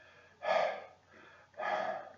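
Heavy, breathless panting: two loud, raspy gasps with a quieter breath between them, from someone who has just run through the rainforest fleeing a jaguar. No speech.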